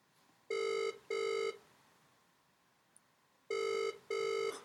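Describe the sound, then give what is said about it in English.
Ringback tone of an outgoing phone call to Adrian Hug, the fines master, at 8 o'clock on Monday night: two paired bursts of a steady, buzzy mid-pitched tone, a pause of about two seconds, then the same double ring again. No one speaks. “See if he answers.”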